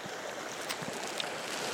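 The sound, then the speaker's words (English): Steady rushing water fills the scene, a broad continuous hiss of small rapids in open water at the base of a waterfall just past a bridge, with faint splashes and gurgles, even in loudness, with no voices. “You can hear the little rapids here at the end.”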